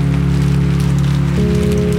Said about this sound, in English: After the police and the coroner and the fire truck left, it started to rain. It fell on the dumpster, the car, the parking lot, the whole scene.